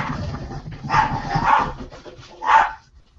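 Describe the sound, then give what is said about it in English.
A dog being babysat barks in a few short bursts, with two louder yaps standing out against a low background murmur, then the sound trails off into quiet. “I'm babysitting a dog”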